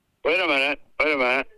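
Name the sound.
muffled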